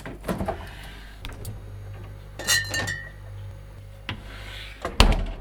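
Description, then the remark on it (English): The FI Garage fridge door opens over a steady low hum as someone checks what's inside, followed by glass bottles clinking and rattling in several sharp bursts, ending with a louder clunk. No one speaks. “I'll go see what's in the fridge.”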